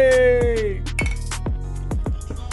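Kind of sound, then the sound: household object, glasses clinking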